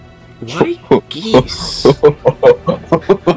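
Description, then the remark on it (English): A person imitates a goose, letting out a rapid run of about ten short, nasal honks, broken once by a breathy hiss partway through. “Why geese?”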